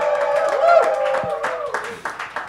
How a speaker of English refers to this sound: Ladies and gentlemen, big round of applause for Collins Cappuccinos!